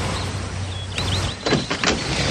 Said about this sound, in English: So when you heard a car pull up and you heard the brakes being applied, it's a great shot of obviously Tubbs arguing with Scotty.